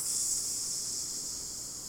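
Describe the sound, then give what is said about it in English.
A steady, high-pitched sizzling hiss of lava runs unbroken for about two seconds. It fades slightly toward the end, with no talking over it. “The sizzling.”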